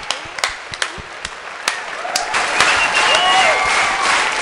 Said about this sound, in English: more applause, more applause!